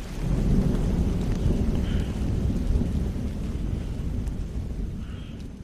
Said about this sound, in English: You're listening to Thunderstorm in the Jungle.